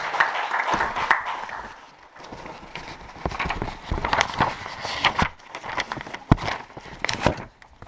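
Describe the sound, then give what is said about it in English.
An audience claps for themselves after declaring the medicine of God over their lives, a dense, uneven burst of sharp claps lasting several seconds, dipping briefly before picking up again, with no voices over it. “Give yourself a hand clap for declaring the medicine of God over your life in Jesus' name.”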